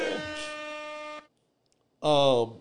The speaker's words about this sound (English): You know what? That's air horn worthy, actually, because that's funny.